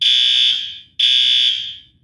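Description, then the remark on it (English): A fire alarm in an office blares in two loud, piercing electronic bursts, each lasting about a second with a brief gap between, the shrill tone dominating with no voices. “So we just found out that if the kitchen burns something and sets the fire alarm off, it also gets set off in our office.”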